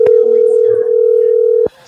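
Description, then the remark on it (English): A loud, steady telephone dial tone hums continuously for well over a second, then cuts off abruptly, leaving only faint background sound as a call is placed to return a missed call. “I saw the missed call, so I'm trying to call her back.”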